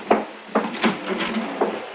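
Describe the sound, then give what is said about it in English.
A front door being opened on a warm evening, a handful of wooden clunks and latch rattles spaced irregularly over a couple of seconds, with a faint low hum underneath. “You mind opening the front door”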